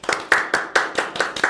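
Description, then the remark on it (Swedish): Hands clap in a steady, even rhythm, about seven crisp claps in quick succession, fairly loud, like a few people applauding, with no talking, welcoming a guest at Baluba. “Kan vi inte ge en applåd?”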